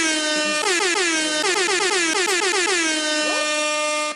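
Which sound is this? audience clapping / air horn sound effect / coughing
air horn sound effect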